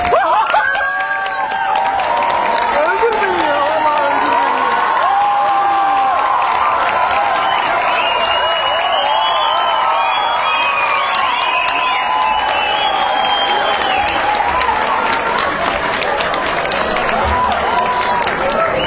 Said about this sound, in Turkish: Ama bir alkışla gelirse güzel olur.